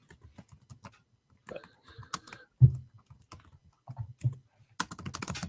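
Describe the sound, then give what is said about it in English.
Quick, uneven clicking of keys on a computer keyboard, with short pauses between bursts and a denser flurry of taps at the end. “Sorry, I was typing something.”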